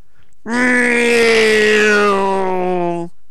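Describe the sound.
A person hums a loud, sustained droning tone, imitating an airplane while running around with an Xbox 360 controller. The steady buzzing note holds for about two and a half seconds, sinking slightly in pitch before stopping abruptly.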